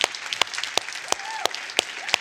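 A crowd applauds steadily for veterans and serving military members standing up, a dense wash of clapping with sharper, louder claps standing out at a regular beat, plus faint whistle-like tones mixed in.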